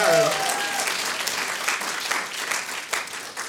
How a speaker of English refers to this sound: You got one of our two smaller questions right. Big round of applause.